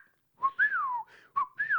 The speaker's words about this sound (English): … whistles his commands to the dogs.